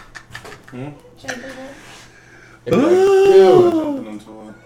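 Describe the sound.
After some quiet talking, a cat lets out one loud, drawn-out meow, its pitch rising and then falling over about a second and a half.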